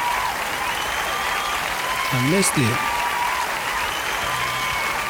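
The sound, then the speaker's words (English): Steady, dense audience applause welcoming the host of the Almighty Show fills the whole stretch, loud and unbroken, with a brief spoken phrase rising above it partway through. “You all are way too kind. Far too kind for me. All right, guys. Let's settle down.”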